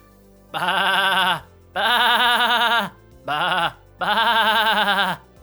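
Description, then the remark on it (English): A person imitates a goat with four loud, wavering bleats in quick succession, each a sustained quavering cry, separated by brief pauses, with no other sounds. “No, I am not speaking the language of my people, I am speaking GOAT.”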